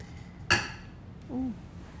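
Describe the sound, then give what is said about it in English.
Two cups of tea clink together once in a toast, a single sharp, bright tap with a brief ringing tail, followed by a short, soft gliding vocal sound. “Do you have anything to cheer with? Ah, I do. Here you go. Oh. Cheers!”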